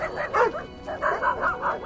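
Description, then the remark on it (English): Dogs bark in a quick run of short, yappy barks, a few overlapping early, then a steady rhythmic series, fairly loud with no one talking. A handful of dogs on the sand at a beach by a shallow bay. “At the beach, Lola leaps from the car and gallops to join her pack, a handful of handsome dogs consulting nosewise on the sand.”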